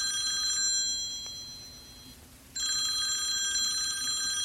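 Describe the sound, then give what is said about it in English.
A telephone rings with a bright, buzzing bell tone after a phone call to a high school is dialed, fades into a short pause, then starts ringing again. It is clear, with no one speaking. “She sighs, picks up her phone, and dials the high school.”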